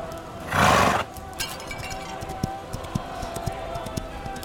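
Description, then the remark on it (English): A horse lets out a single short, loud neigh near the start, followed by quieter ambient noise scattered with faint clicks and knocks. “My lady, take our horse and head uphill.”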